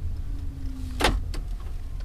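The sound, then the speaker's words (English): A new battery-operated electric car (EV) that needs no gasoline idles with a low, steady hum and a faint electric whine, broken by one sharp mechanical clunk and then a softer click. “It's an electric vehicle, or an EV, a battery-operated car that doesn't require any gasoline.”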